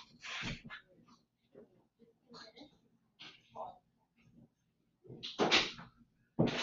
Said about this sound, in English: It's a knock on the door, but I will continue.